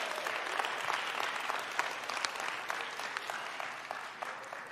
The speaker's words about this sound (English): Would you give God and Grace a round of applause?